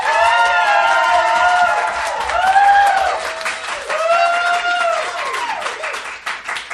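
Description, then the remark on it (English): An audience claps steadily while many voices cheer and whoop over the top, applauding to vote for the winner of a debate; the applause is loud and sustained throughout before easing slightly near the end. “please applaud now.”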